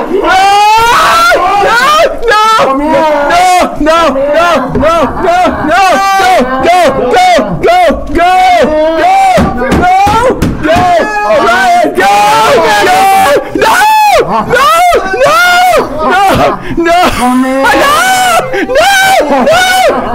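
A crowd of people screams and yells loudly and continuously, overlapping high-pitched shrieks and cries rising and falling for the whole stretch, close and chaotic.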